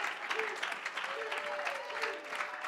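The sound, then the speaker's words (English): An audience at an evening church service claps steadily in praise of the Lord, a dense, continuous wash of many hands, with faint voices and a few brief tonal calls rising over the applause. “Come on, give the Lord a real good hand clap of praise.”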